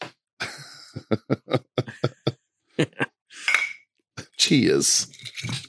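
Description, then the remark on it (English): A quick series of sharp glassy clinks and taps as a bottle is handled and glasses of pink drink knock together in a toast, followed by louder rustling, sloshing noise and a brief vocal sound. “Hand me that bottle real quick.”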